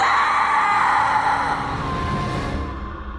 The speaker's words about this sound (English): The regular exorcisms continued, but they finally came to a dramatic end at the stroke of midnight, when the last demon left her body with a loud, piercing scream.